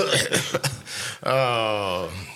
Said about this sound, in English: As you clear your throat, are you still sick? Yeah, come on. I'm not contagious, guys.